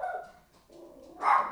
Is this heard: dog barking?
yes